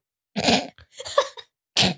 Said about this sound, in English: What was that? What was that? I was sneezing.